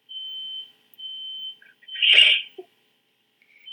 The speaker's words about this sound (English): So we're gonna ignore the fact that my fire alarm is going off in the background.